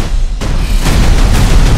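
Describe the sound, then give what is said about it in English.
A loud, rumbling explosion swells into a chaotic barrage of further blasts and sharp bursts, like a battle raging, with no voices. “What did I tell you? Minimal no explosions. I said no explosions.”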